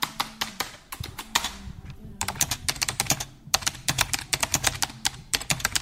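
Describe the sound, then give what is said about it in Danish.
Rapid typing with artificial nails on a computer keyboard, a steady stream of sharp clicks with brief pauses between bursts, and no voices. “Når man har kunstige negle, påsatte negle, som jeg har, så går der ikke mere end 5-6 uger max, fra jeg får et nyt tastatur, til der ikke er...”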